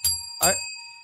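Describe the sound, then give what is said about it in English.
A bell marking an Academy Awards segment rings twice in quick succession, each strike bright, its clear metallic tone lingering and slowly fading afterward. “If it's a bell that is attached to Academy Awards, no, I don't hear anything.”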